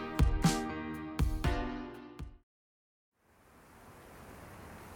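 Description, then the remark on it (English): A short burst of loud tonal music with heavy hits cuts to silence, then a steady, fairly soft outdoor ambience of rushing wind in a park fades in and continues without voices. “Alright, so we're here at Jubilee Park again.”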